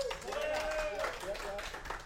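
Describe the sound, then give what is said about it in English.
A crowd at a live show applauds to vote that a news story about an exploding porta potty happened in Florida, a dense, even wash of many hands clapping for about two seconds, with a voice or cheer rising above it. “How many of you guys think that happened in Florida? Round of applause.”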